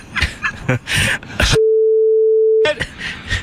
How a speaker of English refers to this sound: we're beeping all this out.